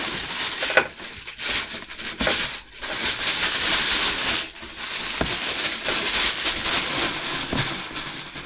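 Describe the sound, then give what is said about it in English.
Steady crinkling and rustling of plastic wrappers being unwrapped from newly ordered audio equipment such as a pop filter, bright crackly bursts with brief pauses between handfuls, fairly loud and continuous with no talking. “I'll just start unwrapping stuff and making audio joy.”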